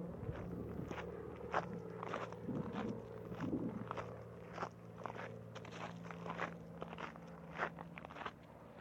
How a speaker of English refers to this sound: Took a shortcut down the railroad tracks. Listen to my feet walking. Hear that?